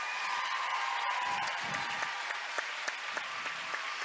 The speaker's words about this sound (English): He deserves this applause. He's a brilliant, lovely young man.